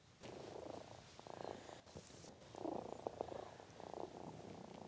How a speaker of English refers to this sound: Hi, Boo Boo. I can hear you purring on the mic. You know, I'm not going to apologize for that. Cat cameos are to be seen as bonuses.